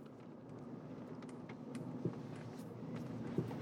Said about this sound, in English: I'm driving to work right now. I had to make sure I have gas in my car.